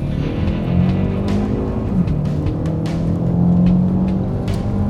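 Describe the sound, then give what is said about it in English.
A car engine rumbles steadily as a car drives past and heads off, with low harmonic drone and slight pitch shifts as the vehicle moves, occasional sharp ticks above; no one speaks. “Okay, as soon as this car goes by, if you want to just follow him out, that's lovely.”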